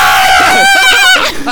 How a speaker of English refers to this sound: I was doing the punchline scream. Do you want to do the punchline scream on the count of three? Oh, God. Okay. All right, ready? One, two, three.